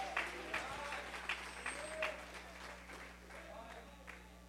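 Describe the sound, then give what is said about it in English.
A crowd claps their hands steadily in thankfulness for several seconds, a dense patter of many hands, with scattered voices calling out over the applause before it slowly thins. “Oh, clap your hands if you're thankful for the liberty that we feel.”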